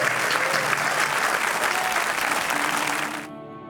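A crowd applauds in thanks to a speaker, a dense wash of many hands clapping at an even level for about three seconds before it quickly cuts off.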